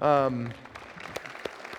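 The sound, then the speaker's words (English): A brief, sustained voiced sound opens, then a sparse smattering of applause follows: a handful of scattered, irregular claps, fairly faint and thin rather than a full ovation. “A smattering of applause.”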